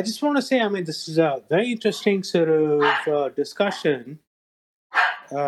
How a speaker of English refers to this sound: Sorry, that's my dog's barking in the background.